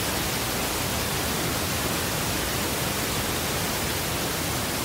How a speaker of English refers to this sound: Very good. Listen for that. Notice the pink noise is mixing with the tinnitus.